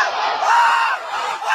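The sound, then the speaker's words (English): Loud, continuous screaming and yelling from several voices, recorded on someone's phone, blends into a dense, high-pitched wall of sound, with only brief dips in intensity across its short span. “Yo, who's screaming?”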